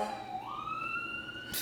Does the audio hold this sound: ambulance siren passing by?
yes